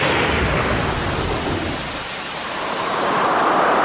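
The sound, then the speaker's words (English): A thunderstorm: steady heavy rain hisses throughout while a deep rumble of thunder rolls low underneath, fading midway before the downpour swells again. No voices. “Storms are Australia's most costly natural disaster.”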